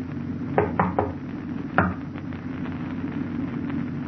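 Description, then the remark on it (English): Three quick knocks on a locked door, then a pause and one more firm knock, against a steady low background rumble with no one speaking. “Yeah, the door's locked. Open up, Doc, it's us.”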